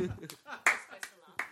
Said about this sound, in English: Tell you what else is cringe. Recording with a live studio audience. This is the part where you clap.